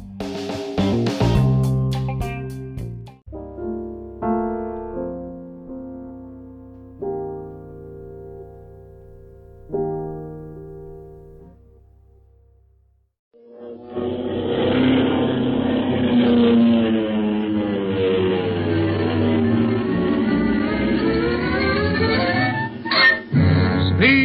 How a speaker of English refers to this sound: From out of the past comes a thundering roar of the twin Wasp 14-cylinder radial engines.